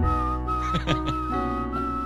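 A person whistles badly: a thin, wavering tone that wobbles and breaks off into breathy gaps, heard close up over a steady low hum, with no talking.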